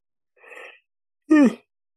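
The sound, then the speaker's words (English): A loud yawn: a soft breathy intake, a short pause, then a strong voiced groan that slides down in pitch and cuts off. No one speaks. “I don't know why I have to make that so loud when I yawn.”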